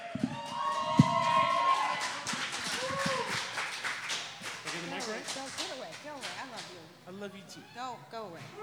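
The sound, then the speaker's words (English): An audience bursts into sustained applause for a performer heading into the finals, a dense, steady patter of many hands clapping, mixed with whoops and cheering voices that rise and fall throughout. “Please give a huge fucking ape shit round of applause”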